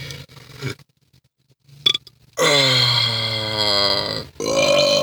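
A long, loud, drawn-out burp rings out close up, with a deep rumbling tone that wavers for about two seconds before a second belchy burst at the end.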